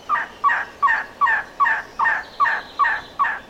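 A trogon in Ramsey Canyon gives a steady series of nine hoarse, croaking calls, evenly spaced about twice a second, fairly loud, with no voices and only faint background noise.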